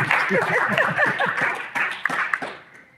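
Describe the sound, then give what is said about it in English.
An audience at a technology panel talk applauds the panelists being introduced, in a dense, steady wash of overlapping claps with a few sharper individual hits, mixed with some murmuring voices, then tapering off toward the end. “Feel free to give them a round of applause.”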